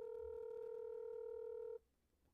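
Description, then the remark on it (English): A phone line's ringing tone on an outgoing call to a father's work phone: one steady electronic burst lasting nearly two seconds, then cutting off into quiet line hiss. No one speaks. “I'll edit the rings out, so.”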